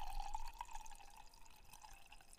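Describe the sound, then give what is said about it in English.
A drink is poured steadily into a glass, a continuous gurgling trickle with small splashy bubbles, fairly quiet, with no voices over it. “You better tell me when to stop. Man, just pour the motherfucker.”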